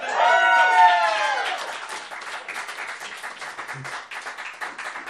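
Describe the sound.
Audience applause: a loud burst of voices cheering opens it, then many hands clap in a dense, steady patter that holds at an even level to the end.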